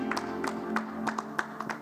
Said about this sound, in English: The Lord, a clap of praise.